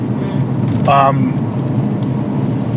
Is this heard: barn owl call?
no